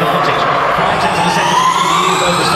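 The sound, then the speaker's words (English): The tyres of a race car, believed to be Mitch Evans's and running on fairly hard, grooved Hankook tyres, screech loudly as it corners, a continuous high-pitched squeal whose pitch climbs steadily over a dense wash of crowd and engine noise. “You can hear the tyres fighting for grip around the corner because they run on these fairly hard Hankook tyres, which are groove, which means they can run in the wet or the dry.”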